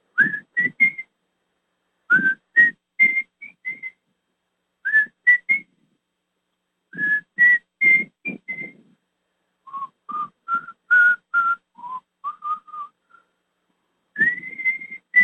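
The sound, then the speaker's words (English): A person whistles the slow opening melody of a rock song in several short phrases separated by brief pauses, with audible breathy puffs under the clear, steady whistled notes. “And the beginning, how many of you recognize this little whistle in that song?”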